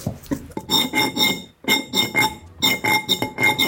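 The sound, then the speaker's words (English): The melody of Jingle Bells tapped out on glasses, bright ringing clinks struck one after another in three short phrases with brief pauses between, fairly loud and with no voices. “That was Jingle Bells.”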